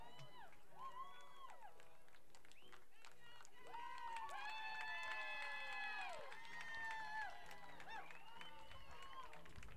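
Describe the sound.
A baseball crowd sings together in a loose, ragged chorus, many voices holding and sliding between long notes, swelling louder through the middle before easing back.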